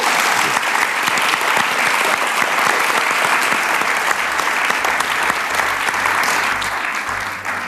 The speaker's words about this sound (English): Okay, so that wraps up the panel. So give us a round of applause.